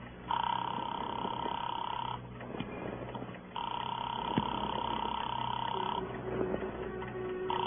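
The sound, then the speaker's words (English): A phone call to Gilbert's jewelry shop ringing through the line at 11:30 at night: two long electronic ring tones separated by a short pause, with a thin, tinny telephone quality and a low background hum throughout. “Give me that phone.”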